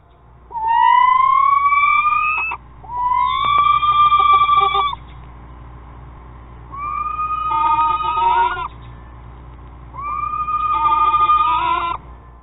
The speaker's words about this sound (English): A small, nocturnal, predatory bird known as the screech owl. Now, these efficient little killers got their nickname due to the screeching sounds that they emit. Sounds similar to these. Courtesy of the Jollyville Screech Owl House over at YouTube.